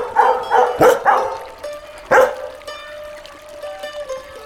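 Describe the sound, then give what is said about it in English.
Dogs bark at the Last Blossom in a quick cluster of four or five yaps, then a single sharp bark after a short pause, followed by a thin, high whining tone. “The dogs absolutely love it here. Isn't that right, boys?”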